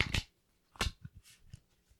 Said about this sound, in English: All right, so I've shuffled it three times. I'm now going to cut it in a way that feels good to me.